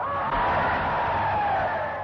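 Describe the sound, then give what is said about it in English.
A large, jubilant crowd cheers and shouts in a continuous, dense roar after British Prime Minister Chamberlain announces the agreement signed with Herr Hitler, with a few raised voices standing out above the mass, loud and steady throughout. “As you can hear, the crowds were jubilant.”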